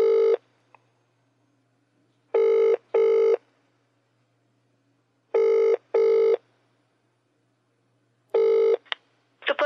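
An outgoing call rings unanswered: repeated pairs of electronic ringback tones separated by long pauses, steady and clear, ending in a brief click and rustle.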